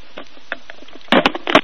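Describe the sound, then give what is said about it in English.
A telephone handset is fumbled and hung up: a few soft taps and clicks, then two loud bursts of plastic clattering and rattling as the receiver is set down. No voices. “God, that was the longest phone hanging up we've ever heard on this show.”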